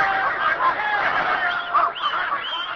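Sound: dogs barking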